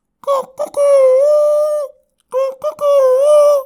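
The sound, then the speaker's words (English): A person imitates a rooster crowing twice, each call opening with short choppy bursts before a loud, sustained, wavering cock-a-doodle-doo cry, separated by a brief pause. “And did such a great impression that for a moment I thought he was a rooster.”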